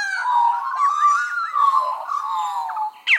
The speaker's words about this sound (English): And this pied currawong I just think is super cool. I mean, listen to that.